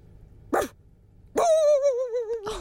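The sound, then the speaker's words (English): A girl imitates a big dog: one short, gruff bark, a brief pause, then a long wavering howl-like bay, loud, with another bark starting at the end. “And here's my dog impression.”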